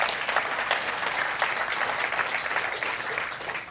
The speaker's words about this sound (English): Yeah, okay, clap for that.